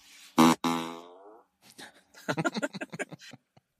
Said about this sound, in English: not only do you have the internal fart sound, but now you can play it on the outside of the car